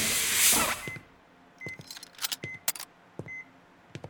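Heavy quarantine doors slide open with a loud pneumatic hiss lasting about a second, then scattered mechanical clicks and clunks mix with a few short, high electronic beeps.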